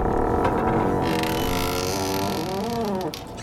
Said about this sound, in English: Oh, Mom, thank goodness, Camilla whispered as she heard the door creak open.